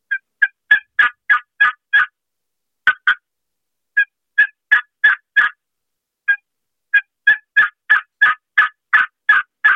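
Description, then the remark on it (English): A turkey call worked in a slow, deliberate turkey rhythm: clusters of sharp, raspy yelps and clucks with short pauses between runs, fairly loud, with no talking. “Slow that call down to a proper turkey rhythm like this. This is the same call I just ran.”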